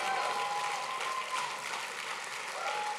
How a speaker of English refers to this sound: Give your new brothers and sisters a great big hand clap as they return to their seats.